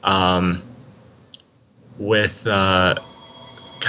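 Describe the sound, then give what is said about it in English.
A phone ringtone plays in the background in loud, tonal bursts, a short chime, a pause, then two more rings close together, with a faint hum. “Can you hear that phone in the background?”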